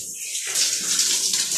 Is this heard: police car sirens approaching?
no